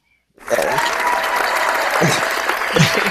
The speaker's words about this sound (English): It seems like you just keep getting claps, like the audience is loving you over here.